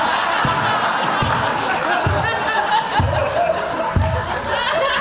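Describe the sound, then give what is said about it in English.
Slow, deliberate sarcastic applause: a handful of loud, evenly spaced claps ring out over a steady murmur of crowd chatter and scattered laughter. “For home listeners, that's applause. That's sarcastic applause if you have a microphone in your hand.”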